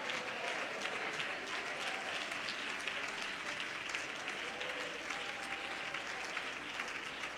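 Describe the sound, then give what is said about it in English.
An audience claps hands to thank God in a steady, dense burst of applause that holds at an even loudness for several seconds, the many overlapping claps forming a continuous crackling wash. “Somebody clap your hands and thank God right now.”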